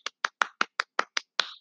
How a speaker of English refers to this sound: Gotta give that a clap.